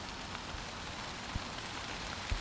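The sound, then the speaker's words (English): Steady patter of rain falling through a forest, a soft continuous hiss broken by a few heavier drops plopping. Fairly quiet, with no voices. “I want to come out and feel the raindrops, hear the wind.”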